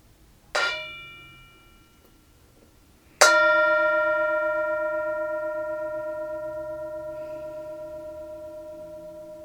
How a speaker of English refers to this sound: And of course, we'll have the mindfulness bell, an invitation to be present and enjoy presence and enjoy the sound of the bell.